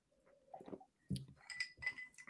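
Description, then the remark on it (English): Glasses clink together in a toast, a few bright ringing chimes in quick succession over a second or so, clear, with faint rustle and murmur in the background. “He's got a Guinness. Cheers, boys. Cheers, Rip.”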